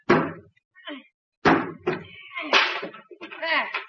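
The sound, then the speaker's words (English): A few sharp, hard blows strike a wooden bathroom door in quick succession, knocking loose a piece of wood sawed out around the doorknob, with brief voices sounding between and after the impacts. “The piece of wood around the doorknob that I just sawed.”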